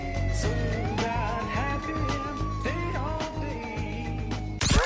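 police siren

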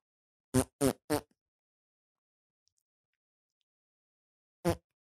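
fart noise

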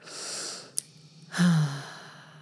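snoring

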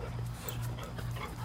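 dog panting and whimpering

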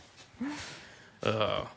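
dog

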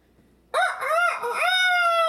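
rooster crowing

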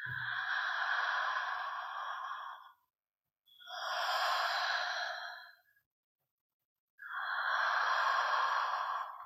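slow deep breathing

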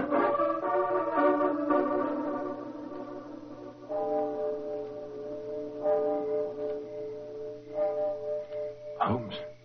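clock striking midnight

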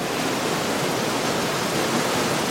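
rushing river water

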